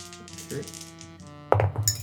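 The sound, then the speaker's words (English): Two dice rattling and clicking across a hard surface as a player rerolls a 1 and a 3 in a dice game, a soft run of light clinks that breaks into a sharper, louder clatter near the end as they tumble and settle. “I am going to put my 6 and my 5 in the interference field, and I'm going to do 2 bets per dice. and reroll my 1 and my 3.”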